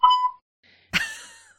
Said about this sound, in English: Now I gotta yawn. And I made you yawn.